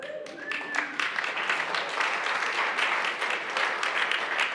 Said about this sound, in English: You applaud that.